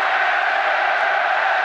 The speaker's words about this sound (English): The tackles are ferocious here in the Aviva Stadium. Leinster being encouraged by the crowd. Just listen to this.